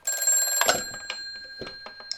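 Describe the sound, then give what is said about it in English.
A telephone bell rings steadily in an office, one sustained metallic ring with a few soft knocks and clatters underneath, no voices. “Answer the phone.”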